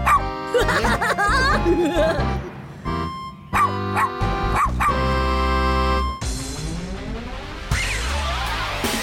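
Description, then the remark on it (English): A small dog yaps and yips in quick, excited, loud bursts, with a busy mix of other sounds layered underneath as the barking carries on. “Go away, doggy.”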